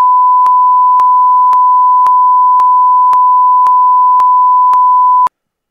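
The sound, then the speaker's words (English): A loud, steady censor bleep: one unbroken high-pitched tone held for about five seconds, with faint regular ticks underneath, then cutting off abruptly. No voices are heard. “If you were to guess what came out of his mouth, and I'm willing for you to say it, and we'll just beep it out accordingly, what do you think came out of his mouth to the ref?”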